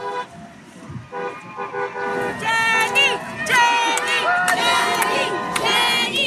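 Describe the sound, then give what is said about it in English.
A large crowd, maybe hundreds of people holding signs in Central Park, New York, cheers and shouts steadily to greet an arriving woman while several horns toot over it in overlapping, sustained blasts, the din growing louder after the first second and staying dense throughout. “there's a crowd, maybe hundreds of people strong, holding signs, waiting in Central Park to greet her.”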